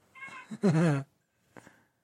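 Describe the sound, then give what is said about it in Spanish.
A cat, Chufi, meows loudly, one drawn-out, wavering cry preceded by a short chirp, followed by a brief softer mew after a pause. No one speaks. “Gondi hace los maullidos tiernos.”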